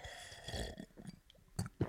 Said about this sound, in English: That was a gulp. Oh, so the gulp is when it goes down. A gulp is the going down bit rather than the size of the amount of...